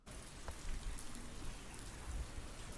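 Steady rain falls, a dense, even hiss with scattered drops pattering on a surface and a low rumble underneath. No one speaks.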